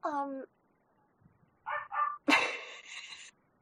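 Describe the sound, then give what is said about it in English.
Someone imitates a dog: a drawn-out whiny yelp, a pause, two quick short barks, then a louder, longer howling bark that trails off. “She's been turned into a dog.”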